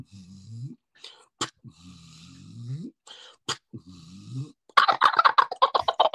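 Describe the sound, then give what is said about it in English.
A wild turkey gobbler's gobble bursts out near the end, a loud, rapid rattling string of pulses, after several seconds of soft, low breathy sounds and faint clicks, heard while a hunter calls the bird in. “You hear the rattle at the end of his gobbling.”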